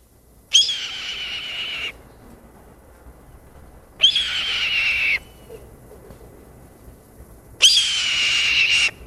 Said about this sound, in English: Now I'm gonna play the red-tailed hawk so that you can hear what it sounds like.